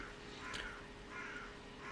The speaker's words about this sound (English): This week's episode is brought to you in a field with a crow, apparently. I think it might be a crow. Might be a raven. Sounds like a crow.